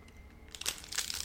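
Crisp crunching as someone bites and chews a biscuit, a quiet start giving way to a cluster of crackly, brittle bites with no talking.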